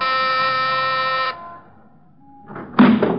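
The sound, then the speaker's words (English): A loud, steady buzzing doorbell sounds for just over a second and cuts off. After a quiet pause with a faint lingering tone, rattling and thumping noises follow. “Ring the bell.”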